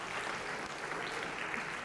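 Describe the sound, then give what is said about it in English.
An audience claps steadily for two players after a game, a dense, even patter of many hands at a consistently loud level with no voices rising above it. “So a round of applause for these two.”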